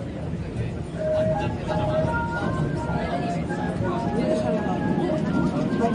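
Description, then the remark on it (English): A Seoul metro line 5 subway train in South Korea rumbles steadily with a continuous, loud mechanical roar and faint whining tones, while a crowd of passengers chatters indistinctly throughout. “The dulcet tones of Seoul's metro line. This one was number 5, which was the one that took us out to Bangwa, where we spent 6 happy days amongst a million people.”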